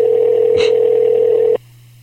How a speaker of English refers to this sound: Yeah. All right. I'll call him. Let's see if he answers the phone. And why? And we're calling him on the air.